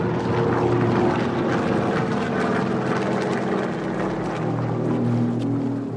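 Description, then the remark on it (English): A low, continuous drone of Japanese enemy propeller warplanes hums overhead above Guangdong Province, China, near the southern coast, steady and fairly loud throughout, with a thick rumbling engine tone and no voices. “the people of Guangdong Province in China, near the southern coast, noticed a low droning sound in the air.”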